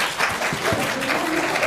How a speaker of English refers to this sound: Now, I'm not sure what the applause was for. What was the applause for?